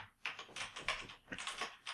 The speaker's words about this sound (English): And just mash her old lady fingers into the keyboard. And I want the keyboard, I just want it to look like just old lady, like.